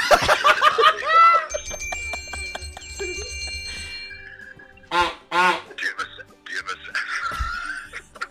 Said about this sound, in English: Are the geese there? We got a couple in the studio. We got it.